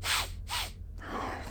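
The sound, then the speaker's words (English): A lion sniffs deeply in a dark cave, smelling the air: two deep, breathy sniffs drawn in quick succession, each a rushing inhale of air, followed by a quieter, softer exhale-like hiss. No voices. “The lion sniffs deeply, smelling the air for an intruder, but all it can smell is its own poo.”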